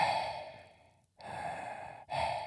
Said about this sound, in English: Are you okay? You're breathing extremely deep. It's hard to breathe in this mask.